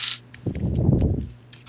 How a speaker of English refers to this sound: I'll throw some dice. Oh man.